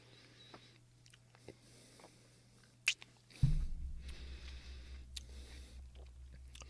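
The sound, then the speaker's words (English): A person chews a hard, salty carrot lick treat: a few scattered mouth clicks, a sharp crunching bite, then steady, wet munching that continues to the end, with no talking. “To be honest, I'm not tasting a ton of carrot. That's definitely salty.”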